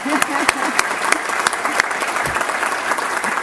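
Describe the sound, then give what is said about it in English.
An audience claps steadily for keynote speaker Mary Robinson, former president of Ireland, a dense stream of handclaps with sharp, crackly transients at fairly even loudness throughout, with no one speaking over it. “Yeah, we can clap now.”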